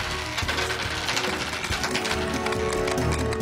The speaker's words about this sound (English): That's a lot of shooting. I'm hearing a lot of dice bouncing.